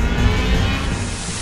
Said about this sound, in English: This is, at least approximately, pure white noise.